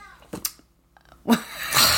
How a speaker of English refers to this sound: The other cat is screaming in the night.